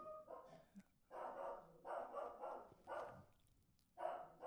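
A dog barks in a steady series of about five drawn-out barks, evenly spaced with short pauses between them, heard alone.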